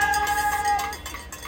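Hand bells ring out at a street protest outside Trump Tower in Manhattan, rung by a group that was also chanting in support of Donald Trump's indictment. Their steady metallic tones hold and then fade over restless crowd noise.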